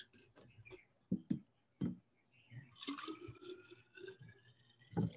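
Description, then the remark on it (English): Water pours into a water bottle for about two seconds, its hollow tone climbing as it fills, preceded by a few sharp clicks and clunks of handling and ending with a clunk. “The one thing I forgot was to fill my water bottle.”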